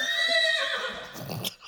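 horse neighing sound effect

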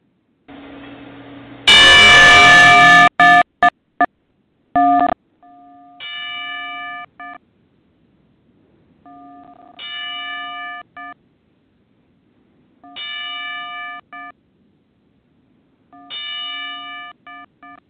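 ten-bell salute

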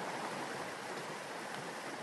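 flowing creek water

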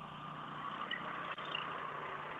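truck driving past

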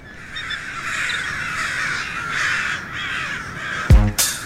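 crows cawing

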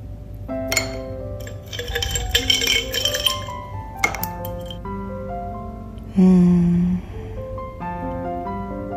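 ice cubes clinking

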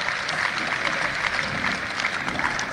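applause

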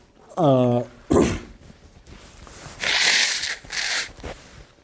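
blowing nose

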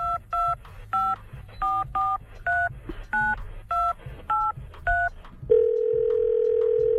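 telephone dialing tones

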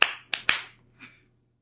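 hand clapping

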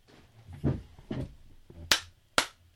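clapping

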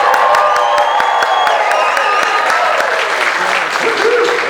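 audience cheering and applause

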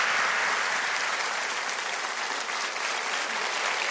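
audience standing ovation applause

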